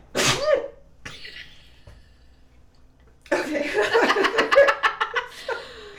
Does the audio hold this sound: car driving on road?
no